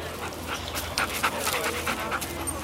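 A cadaver dog pants rapidly and steadily, a run of quick breathy huffs over a low background hum, with no one speaking.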